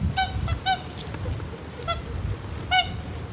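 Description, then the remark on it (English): Whooper swans calling from floodwater covering former fields, where only the tops of fences and gates show: several loud, bugling honks come in short bursts, some doubled, each bright and brassy with a rich harmonic ring, over a steady low rumble with no talking. “But the only livestock to be seen here now are all of these hooper swans in the middle of what were once fields.”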